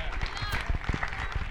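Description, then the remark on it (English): A church audience at a morning service claps and shouts together for the Lord, a dense wash of hand claps mixed with cheering voices that stays steady and fairly loud throughout the short moment. “Can we give the Lord a hand clap and a shout this morning?”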